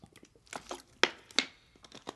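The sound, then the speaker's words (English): Someone takes a sip of water, with crinkly plastic-bottle handling and a couple of sharp clicks and small wet mouth sounds, no talking. “But, so with that said, I'm going to take a sip of water here because I'm going to need it.”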